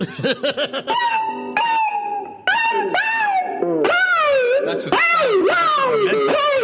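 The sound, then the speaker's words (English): An electric guitar mimics cat meows: quick wobbling notes first, then a run of loud, swooping wails that bend up and slide down in pitch, one after another, with no talking. “Do you want to hear my little kitty sounds on my guitar?”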